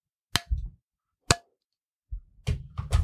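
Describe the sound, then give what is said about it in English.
An egg being cracked: two sharp, separate taps against a hard edge, then a longer burst of crunchy cracking and wet, messy handling noise. No one speaks. “All right, we have cracked the egg.”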